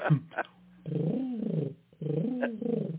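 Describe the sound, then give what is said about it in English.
A person imitates a dove's cooing with two drawn-out, warbling coo phrases, fairly loud, after a couple of short breathy clicks at the start. “That's better than my dove.”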